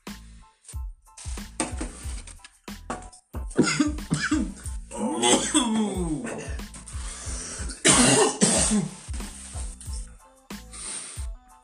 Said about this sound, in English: I've never coughed so much in my life.